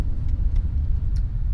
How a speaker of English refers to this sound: This is the typical traffic, unless okay. game day. Lots of this, stop and go.